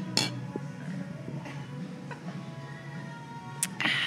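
Several sharp clinks of beer glasses ring out at uneven intervals over a low murmur as people toast with a grapefruit IPA made with key lime juice, the last pair close together with a brief bright ringing tail.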